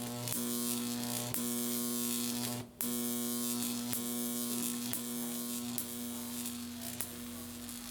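A Jacob's ladder arc buzzes loudly and steadily for about eight seconds, a harsh electrical hum laced with crackling hiss, cutting out briefly once before the buzzing resumes, with faint snaps along the way.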